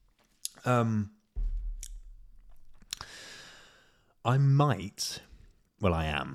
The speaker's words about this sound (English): I'm actually going to have a little sip of Beveragini, so bear with me. Lovely.